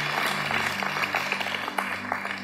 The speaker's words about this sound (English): If you're grateful that you are safe and you are secure. Can you let the Lord know right now with just a clap offering and a thanksgiving to Him? So grateful.